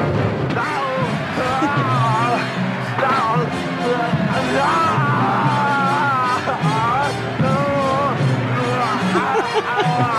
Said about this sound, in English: Oh, this is perfect. This is every Arnold scream from every Arnold movie. Listen.